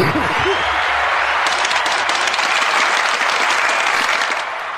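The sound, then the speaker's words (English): A crowd breaks into loud, sustained applause with scattered whoops and cheers, a dense wall of clapping that holds steady for several seconds before easing slightly at the end. “Make some motherfucking noise.”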